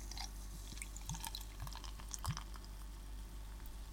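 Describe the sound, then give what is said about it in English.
Export India Porter from the Kernel Brewery in London being poured into a glass: a steady fizzing, splashing flow broken by three or four low glugs, with crackling bubbles throughout and no talking. “And it's like, right, let's get this out and into the glass.”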